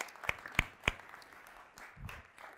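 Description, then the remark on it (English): Scattered audience applause for the speaker's wife, fairly quiet: three sharp, evenly spaced claps stand out over a soft wash of clapping that thins out, with a brief low murmur near the end. “Can you give my wife a round of applause?”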